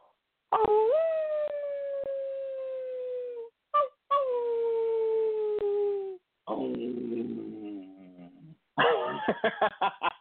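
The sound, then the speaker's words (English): A person imitates how a wolf really howls: two long, sustained, wavering howls, followed by a rougher growling stretch and a burst of short yips, loud with no talking. “A wolf really howls like this.”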